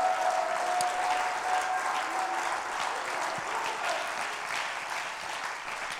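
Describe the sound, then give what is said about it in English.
An audience at the Apostolic Lighthouse church claps together in praise of the Lord, a steady, dense wash of applause that stays loud and even for several seconds, with no voices standing out above the hands. “I'll clap your hands and praise the Lord.”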